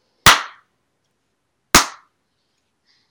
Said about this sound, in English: Slow clap.